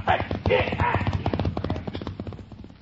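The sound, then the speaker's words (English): Rapid, rhythmic hoofbeats of a galloping horse pound, loud at first and easing slightly, with a brief vocal-like cry mixed in near the start, as a rider crosses on horseback. “We'll have to ride past.”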